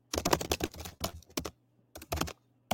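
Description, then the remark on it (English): Rapid bursts of computer keyboard typing, fairly loud, with clustered keystrokes broken by short pauses and a faint low hum underneath. “Is that you typing at the press conferences?”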